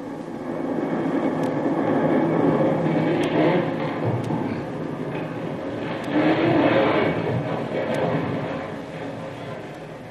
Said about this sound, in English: Just as Jungle Jim reports back to the camp of Captain Swain, who is in command of the landing force of Marines, the very earth trembles with the force of a tremendous explosion whose reverberations can still be heard.